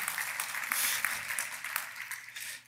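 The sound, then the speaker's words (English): A church audience applauds in celebration of Jesus's resurrection, a dense wash of many hands clapping steadily at moderate volume, swelling briefly before tapering off toward the end. “And yeah, we can clap for that.”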